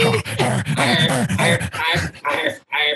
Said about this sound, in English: And, like, I can't help but laugh at the sound effects that the lovely dog's making.